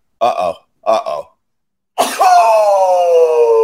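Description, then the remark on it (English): Two short, breathy vocal build-ups, then a loud, Ric Flair-style sneeze that bursts out and stretches into a long, drawn-out wail sliding slowly down in pitch. “That's very rare that you get to hear my Ric Flair sneeze.”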